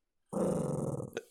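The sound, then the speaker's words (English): A Shih Tzu, growling because it is being hugged, gives one steady growl lasting about a second, rough and rumbling, ending with a brief sharper rise before it cuts off. Nobody speaks. “All I did was have to hug him and he growled.”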